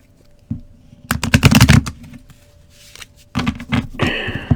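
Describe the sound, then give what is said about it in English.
A deck of cards being shuffled for a card reading, with rapid riffling bursts of crisp flapping clicks, a pause, then another brisk riffle and a final bridge-like rustle. “Shuffle these really good.”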